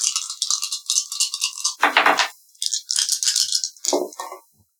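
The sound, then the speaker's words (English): Dice rattle and clatter in a rapid, bright tumble, with a heavier thud-like burst midway, then another run of clicking before it settles into silence; the roll comes up a 2. No one speaks. “I got a 2.”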